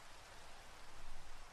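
Steady rain makes a dense, even hiss across the whole clip, with a soft low rumble underneath and no voices, swelling slightly toward the middle before settling back.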